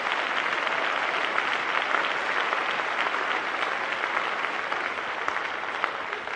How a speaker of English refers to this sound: Give the Lord a hand clap, everybody.